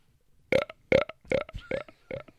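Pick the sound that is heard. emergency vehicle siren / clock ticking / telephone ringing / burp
burp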